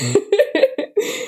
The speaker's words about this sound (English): proceeds to cough mid inhale.